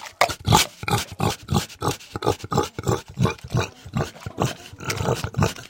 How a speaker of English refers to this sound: I have an embarrassing and, you might say, oxymoronic dilemma. I have a picky pig.